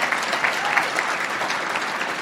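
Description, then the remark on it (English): An audience at an Al-Anon speaker event claps for themselves steadily, a dense, even wash of many hands applauding at a fairly loud level for a couple of seconds, with no voices standing out. “Y'all have been giving me some applause, but I want you to give your hands together to applaud for yourself for participating in your own recovery by being here this weekend.”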